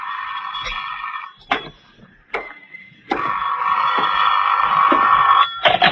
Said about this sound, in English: Phone's ringing, Johnny.